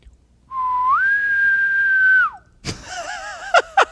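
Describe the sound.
A person whistles an imitation of a distant bugle: one long note that slides up, holds steadily, then drops away, followed by a brief wavering, raspy vocal sound and a couple of sharp clicks.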